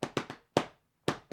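Someone walks into an office and knocks on the door to get a woman's attention with sharp raps: three quick knocks, a single knock after a brief pause, then two more after a longer gap. No one speaks.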